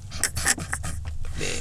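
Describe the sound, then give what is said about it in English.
A hungry person's stomach growls, a low, gurgling rumble held steadily for a moment with a few squelchy bursts on top. It is fairly quiet, with no talking. “I heard it growling. It's growling right now.”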